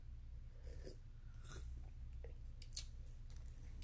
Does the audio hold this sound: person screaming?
no